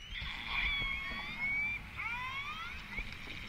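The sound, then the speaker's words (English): A killer whale call: a series of high, wavering, siren-like whistles with rising and falling sweeps, continuous for several seconds over a low rumbling background hiss, with no talking. “The answer is a killer whale, like yes!”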